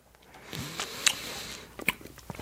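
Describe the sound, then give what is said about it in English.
Chewing of sour Warheads hard candy (1990s edition; apple, black cherry and blue raspberry flavours), with a few sharp crunches and clicks over soft mouth noises, fairly quiet apart from two brief louder snaps near the middle and end. “I almost swallowed one. That would have been bad.”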